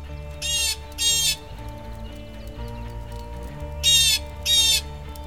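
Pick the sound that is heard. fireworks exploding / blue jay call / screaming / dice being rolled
blue jay call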